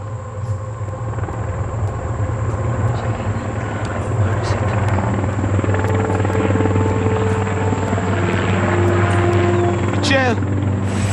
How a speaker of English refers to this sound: Shortly after daybreak, the crew of a Black Hawk chopper spots the crash site. I could see the helicopters perfectly from where I was at, and even though I could see them perfectly, I didn't know if they could see me.